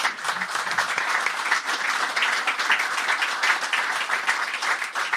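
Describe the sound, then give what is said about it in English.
Sustained audience applause fills the whole stretch, a dense, steady patter of many hands clapping at an even loudness with no voices rising above it. “If I had an applause sign, I think I'd probably put it up about now.”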